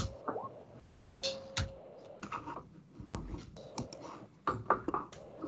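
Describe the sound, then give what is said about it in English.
Irregular bursts of soft, clicky key taps on a computer keyboard rattle along, pausing briefly between flurries, with faint background noise underneath and no one speaking. “Pal GM is typing.”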